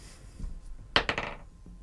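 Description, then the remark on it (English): Dice clatter across a hard tabletop in a quick burst of three or four sharp clicks that settle within about half a second. No one is speaking. “I'll roll to help you, but it ain't going to help.”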